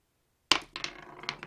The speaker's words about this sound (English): So let's pull from the astrological dice. We got Aquarius here. Okay, we have Pisces here.